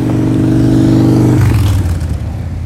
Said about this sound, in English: Motorcycles.